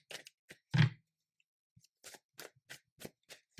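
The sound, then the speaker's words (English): Tarot cards being shuffled for a reading: a quick series of soft, papery snaps and riffles, uneven in rhythm, with one louder slap and brief silent pauses between bursts. No one speaks. “So do me a favor, and as I'm shuffling, just go ahead and close your eyes and just say your name 3 times out loud.”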